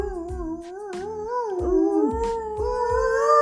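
Several wolves howl together in long, sustained, wavering tones that overlap and slowly rise and fall, with a few soft low thuds underneath and no talking.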